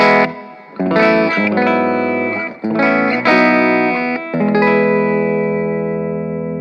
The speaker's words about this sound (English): So, all right, we'll switch back to the speaker and just play a bit more with that reverb. So we'll do the clean reverb first.